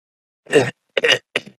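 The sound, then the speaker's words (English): Three short, rough coughing bursts in quick succession, the first the longest and loudest, the last briefer and fainter, with no talking. “He's coughing.”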